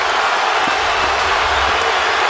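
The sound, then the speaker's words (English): A large arena crowd at the Air Canada Centre, on its feet during a Knicks–Raptors basketball game, cheers in a loud, continuous roar, a dense wash of voices that stays steady throughout, with no single voice standing out. “The crowd on its feet here at the Air Canada Center.”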